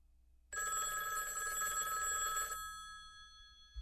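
A telephone bell rings loudly in a single sustained burst of about two seconds, then its metallic tone fades away into silence.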